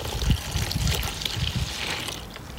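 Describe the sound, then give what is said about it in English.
Homemade bubble mixture with glycerin pours steadily into a big washing-up bowl, a continuous splashing trickle with burbling low gurgles, moderately loud, with no talking. “Right, so I've got my big washing up bowl. I'm going to pour in the mixture.”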